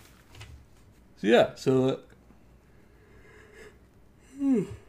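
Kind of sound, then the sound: human body sound, yawn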